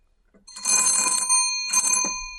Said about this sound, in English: It's like it's such an effective doorbell. We answer the door before you have a chance to ring it. Okay, here it is. Ready? Okay, you ready? Oh, it's stuck. Oh, here.